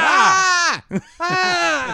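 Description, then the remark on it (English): A voice imitates a girl's high, strained scream, the scream she gives when she is not being paid attention, not crying, in two sustained bursts with a brief gasp between them, loud and harmonically rich, with a slight wavering pitch. “So if you're not staring directly at her or paying attention, she just starts to scream.”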